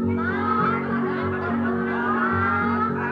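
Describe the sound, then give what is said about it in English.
A voice imitates a hen's clucking in a continuous, sing-song run of calls, held over a steady musical backing at moderate loudness for about three seconds. “The hen went.”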